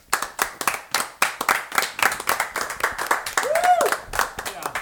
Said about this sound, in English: Can we add in like an applause effect? Let everybody clap.